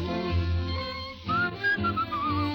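A person whistles a wavering melody over a warm instrumental accompaniment. The clear, pure whistled notes enter partway through and rise above the music at a moderate volume.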